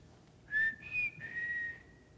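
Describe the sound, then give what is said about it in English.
A short family whistle call whistled by mouth, three connected tones: a quick rising note, a higher held note, then a long steady tone sliding slightly lower, clear with no talking. “But my family growing up, we had a family motto and a family whistle, and this is the family whistle.”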